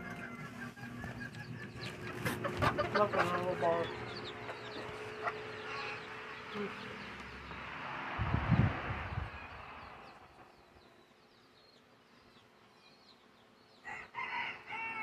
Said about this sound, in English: Just admiring my garden right now. You can enjoy the sound of chewing and chickens. Chewing and chickens. In the morning.